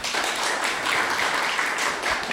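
A crowd applauds steadily for a couple of computer artists introduced as panel guests, a dense wash of many hands clapping at once with no pauses, fairly loud and sustained throughout the short stretch, with no voices over it.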